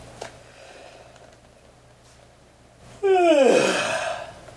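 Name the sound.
big yawn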